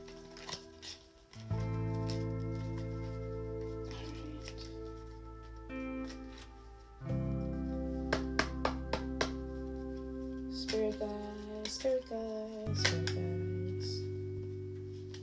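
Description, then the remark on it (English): Tarot cards being shuffled in short bursts of crisp riffling and snapping, partly buried under steady, sustained background music with no one speaking. “I'm going to just shuffle my cards up for y'all and let y'all know what's going on.”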